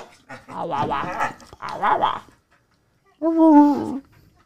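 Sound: dog whining and vocalizing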